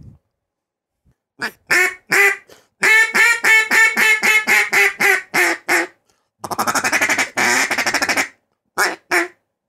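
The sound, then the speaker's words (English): A Jim Stinson duck call from Clarendon is blown in a rapid run of loud quacks: a couple of opening notes, then a fast descending series of about a dozen, followed by raspy buzzing feed-chatter bursts and two final quacks. “Hey, let's hear a duck call. That's a beautiful duck call, by the way.”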